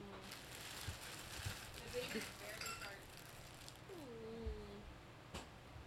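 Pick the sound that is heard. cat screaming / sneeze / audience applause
cat screaming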